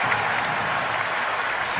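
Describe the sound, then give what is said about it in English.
A large arena crowd at a basketball game cheers and claps in a loud, steady roar after Giannis Antetokounmpo makes a free throw. The roar fills the whole stretch without easing, with no voices speaking over it. “Crowd goes bananas.”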